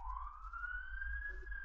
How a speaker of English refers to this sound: Can you hear the fire truck? There's a fire truck outside my house.